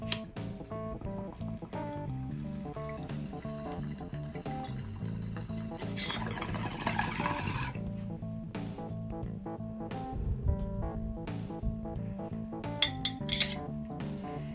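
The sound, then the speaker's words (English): Water gurgles and bubbles steadily inside a glass bong as someone takes a hit of marijuana, with a few light glassy clinks and a brief hissing surge midway. No one speaks. “I have some on my bong. I have some here in my bowl. And cheers, love, and marijuana to you guys.”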